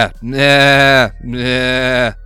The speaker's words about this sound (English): So while you two are, while you guys are in this barn, like in this western cage, it's just an absolute fuck ton of goats.